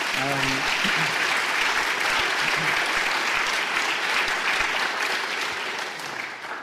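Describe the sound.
A crowd claps steadily in sustained, dense applause that holds loud for several seconds before starting to taper, with a brief bit of voice at the very start.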